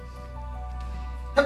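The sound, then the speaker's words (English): A single quick, sharp sneeze bursts out near the end, loud, over a steady low droning hum that fills the rest of the moment. “Bless you.”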